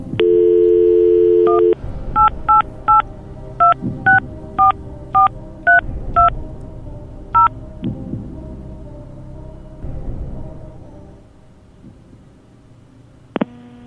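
A steady telephone dial tone gives way to about eleven short, bright two-tone keypad beeps in an uneven rhythm, then a low murmur and one final brief tone.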